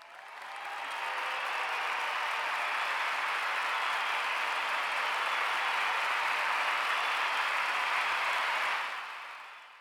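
A steady burst of applause from a sound effect, a dense crowd of clapping that swells in quickly, holds at an even level for about eight seconds, then cuts off sharply, with no voices over it.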